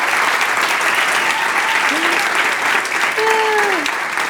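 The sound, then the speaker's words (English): An audience applauds loudly and steadily for Pastor Jared and Pastor Jeannie throughout, a dense wash of clapping, with a couple of brief whooping cheers gliding up and down above it. “Can we clap it up for Pastor Jared and Pastor Jeannie?”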